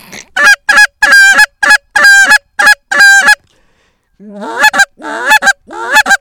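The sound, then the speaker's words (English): A slightly out-of-tune goose call, blown at flying mallards, honks loudly in a quick run of about eight sharp, nasal blasts, then after a short pause gives several longer honks that rise and break upward in pitch. “They will bomb like goose decoys in a while, but... honk at them.”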